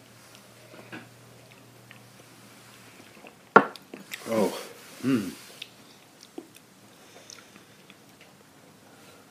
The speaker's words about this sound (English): let's give it a sip after adding some water, see what we got.